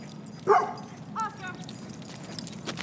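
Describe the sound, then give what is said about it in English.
A dog barks twice, a sharp, fairly loud yap followed about a second later by a softer, shorter one, over a quiet background. “Everybody stay here. That's what happens. Dogs know.”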